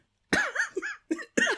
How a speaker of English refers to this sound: I hear coughing. I'm a bit worried he's drunk poison.